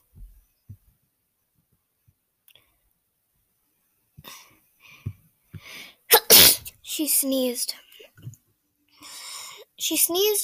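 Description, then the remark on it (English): After a few quiet seconds with faint breathy sounds, a nervous girl lets out a loud sneeze, followed by a couple more sharp sneezy bursts and vocal noises. “She sneezes when she gets, well, nervous.”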